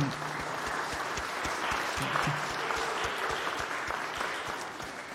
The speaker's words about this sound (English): Let's give them a round of applause for that.